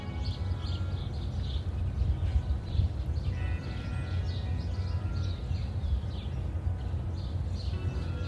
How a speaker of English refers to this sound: How fun is it to listen to these birds out here singing to their little heart's content, calling out their friends. I know it's something so simple, but take a listen with me.